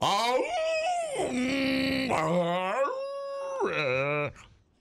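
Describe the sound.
A person imitates a whale call with long, wavering vocal moans that slide down and back up in pitch, sustained for several seconds and fairly loud, with no words spoken.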